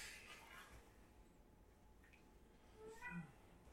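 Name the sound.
cat meowing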